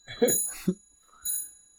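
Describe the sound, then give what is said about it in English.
A clock alarm goes off in short bright bursts, ringing chimes with a high metallic shimmer, two quick ones followed by a third after a brief pause, over faint low murmuring. “My clock's going off.”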